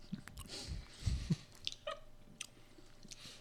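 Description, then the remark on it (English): Sticky chewing of peanut butter cups and wet mouth smacks, a scattered run of soft clicks and lip noises at irregular moments, quiet and intimate, with no talking. “There's going to be just a bunch of like us trying to get peanut butter off the roof of our mouth all episode.”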